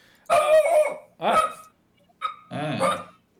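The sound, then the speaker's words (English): A dog barks in four loud, drawn-out bursts with short pauses between them, the last two coming quickly together. “Dog disagrees.”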